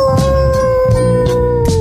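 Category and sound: sound effect, wolf howl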